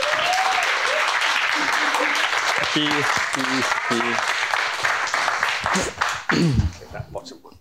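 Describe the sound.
A crowd applauds as a speaker is introduced, a dense wash of clapping that holds loud for several seconds, with a few whoops and voices rising through it before it thins out at the end.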